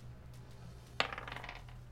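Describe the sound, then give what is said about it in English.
Dice rolled for an athletics ability check with advantage strike a hard table with a sharp clack, then rattle and tumble briefly before settling, fairly quiet over a low steady background hum. “I haven't cooked the dice beforehand.”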